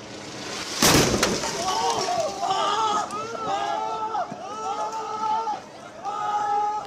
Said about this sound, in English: Well, this video is from the hospital. You can hear an explosion and people taking shelter, followed by screams and panic.